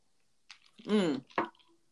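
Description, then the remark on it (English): A slurping sip of Crown whiskey from a glass, then a drawn-out, voiced satisfied exhale and a brief wet smack of the lips, all quiet with no talking. “As I sip on some good old Crown, as I That was a tart sip.”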